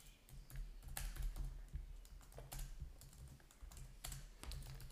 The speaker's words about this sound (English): Yeah, lucky listeners, you get typing sounds. Tippity tip.